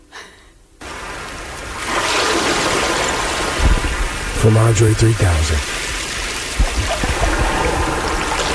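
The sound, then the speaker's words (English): Steady flowing water hisses continuously after a brief quiet start, fairly loud, with a voice speaking briefly over it and a low humming tone rising in the middle. “I added those water sounds.”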